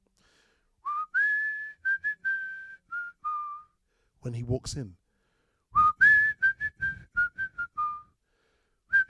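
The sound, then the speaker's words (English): A man whistles a tuneful song melody for a film scene, in clear, sustained notes, broken briefly by a short spoken phrase before the whistled tune resumes, fairly loud. “he's whistling the song that Nat sings to Mary”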